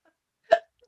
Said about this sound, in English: Look at me go. Look at you go. Prince of burping. I know. I'm coming to my own.